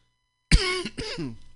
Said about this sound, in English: I'm so sorry. I'm going to be coughing. I could turn away and not let you experience the cough, but I'm going to let it let you be part of my sick world.